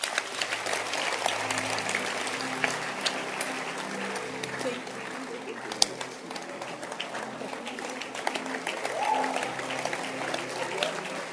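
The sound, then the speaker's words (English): An audience claps steadily for about eleven seconds, a dense, even patter of many hands with a few sharper claps standing out, and a low murmur of voices underneath. “Can you clap your hands?”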